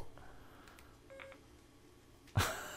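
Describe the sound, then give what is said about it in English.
A smartphone gives a short electronic beep, a quick pair of clean tones, followed by a sudden louder rustling burst near the end. No voices are heard. “That was weird. My phone talks to me sometimes.”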